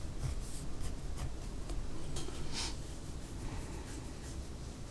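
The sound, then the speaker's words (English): Steady scratching of a pen or pencil dragging across rough paper while drawing a face, with short bursts of strokes over a low background rumble; no one speaks. “Well, this paper's really noisy. I don't usually use like rough paper.”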